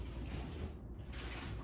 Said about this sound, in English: That was the drawer.